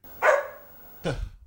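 Two sharp dog barks about a second apart, fairly loud, the second one deeper and rougher, with no voices around them.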